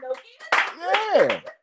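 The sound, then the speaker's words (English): A few short bursts of audience clapping for a man, loud and sharp, with a voice sliding up and down in pitch over the middle of it. “Somebody, please clap for this man.”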